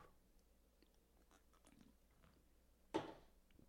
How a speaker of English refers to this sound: Let me fucking take a sip of my tea for this one.